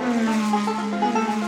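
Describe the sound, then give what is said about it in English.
Race cars roaring around a track, a loud, steady engine drone with buzzing harmonics that shift slightly in pitch throughout, with no voices. “Left turn, left turn. Give me the noise. Give me the cars.”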